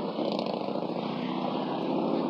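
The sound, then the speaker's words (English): A steady, unbroken roar of street traffic, heard while walking along the side of the street, with a low engine-like rumble and broad hiss holding a constant, fairly loud level throughout, and no voices. “I know it's kind of loud because I'm walking on the side of the street, but it literally could be anything.”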